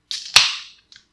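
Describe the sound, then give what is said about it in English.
The tab of an aluminum can of hazy India Pale Ale (7.5% alcohol by volume) cracks open with a sharp metallic snap, followed by a bright hiss of escaping fizz that fades within half a second, then a faint click. “Let's crack her open.”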